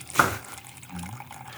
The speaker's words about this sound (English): All right. So I've shaken it vigorously for 20 seconds with ice in it. Okay. Not stirred. It's very foamy. Okay. Is that good? Pour that. Yeah, that's great. That's fantastic. Pour that into a glass. Here we go.